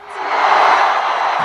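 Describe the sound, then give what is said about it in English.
A large stadium crowd cheers at a rally for Russian leader Vladimir Putin at Russia's biggest sports stadium in Moscow, in a loud, steady roar that swells in the first moments and then holds as a dense, hissing wash of many voices, with no individual speech standing out. “Listen to that Russian crowd.”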